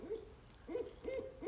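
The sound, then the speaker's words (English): An owl that lives back here hoots in a steady, repeating series of low, rounded calls, three or four in quick succession, against a quiet outdoor background. “We have, like, one owl that, like, lives back here, and he hoots.”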